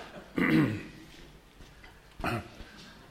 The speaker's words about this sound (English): Just having somebody over here, having a bit of a cough. Oh, you've got some. Sorry.